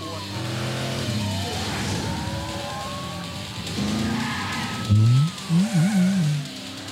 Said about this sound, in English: Sorry, I'm trying not to hold my breath during this car chase.